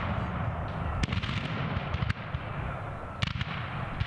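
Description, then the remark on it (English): Heavy booms of cannon fire ring out amid a dense rumble of rifle fire in a battle of more than 10,000 soldiers in a North Florida pine forest 15 miles east of Lake City on February 20, 1864, with sharp reports around one, two and just past three seconds over continuous battle noise. “The loud booming of cannon fire rips through the North Florida pine forest 15 miles east of Lake City as startled cavalry horses whinny.”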